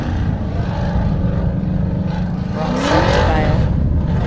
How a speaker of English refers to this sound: Nice. Truck coming through. They made that look easy.